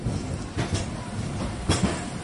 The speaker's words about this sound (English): Oh, here comes the tram. Here comes the tram.